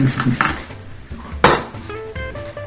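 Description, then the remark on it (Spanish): Coins worth 5 pesos dropping into a piggy bank: a faint rattle, then one sharp metallic clink followed by a few bright, ringing tinkles that fade out. “Puse los 5 pesos de subte un este.”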